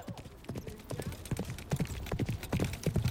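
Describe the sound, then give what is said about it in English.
Rapid horse hooves clip-clop across a stage in a busy, uneven rhythm of sharp knocks, steady throughout, with a faint murmur of voices underneath. “Feyora's horse came back and pummeled Devok across the stage”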